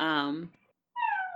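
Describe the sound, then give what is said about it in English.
A six-year-old boy gives two meow-like cries in imitation of a cat: a long, loud wavering call, a short pause, then a higher, thinner second mew, with no other talk. “Is that an Echo or it almost sounds like a cat on the recording? It's a 6-year-old who thinks he's a cat.”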